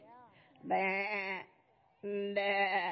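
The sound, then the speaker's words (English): A human voice mimics a sheep, giving two loud, drawn-out, quavering baas separated by a short pause and preceded by a soft vocal murmur. “Hear the baa, baa, baa, the sheep who crept and slept.”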